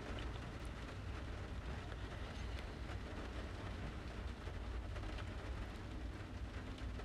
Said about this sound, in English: I am recording this episode from inside my car, where you can hear the pitter-patter of the rains from Tropical Storm Eta.